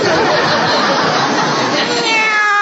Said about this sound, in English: Well, it's a kitty cat. Oh. Isn't he cute?